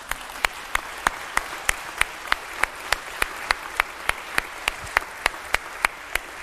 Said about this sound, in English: Somebody needs to clap.